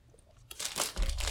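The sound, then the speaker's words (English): A bag of Pop-Tart Bites is torn open: after a brief quiet moment, loud crinkling and rustling of plastic packaging bursts in and continues in bright, scratchy waves. “Hey, have you seen these? What are the... Oh, Pop-Tart Bites.”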